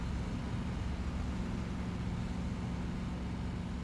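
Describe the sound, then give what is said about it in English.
A muscle car's engine drones steadily as it is driven along a road and over a hill, the engine worked hard, a constant low rumble with road noise, fairly loud, with no voices. “Over the hill he travels, working the engine, looking to get as far away as he can.”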